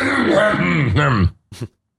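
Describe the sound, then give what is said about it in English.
A person clears their throat: a long, rough, voiced rumble lasting over a second, followed after a short pause by a brief second clearing, with no other sounds around it. “I'm going to clear my throat a few times.”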